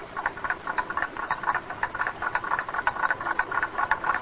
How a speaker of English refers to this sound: Just a single clock ticking away.